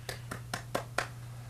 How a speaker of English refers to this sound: Clap.